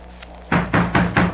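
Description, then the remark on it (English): Four loud, heavy knocks pound on a train compartment door in quick, steady succession after a brief quiet moment, forceful, with no voices, as someone tries to rouse the sleeping occupant. “I practically broke down this compartment door, but I can't get him out.”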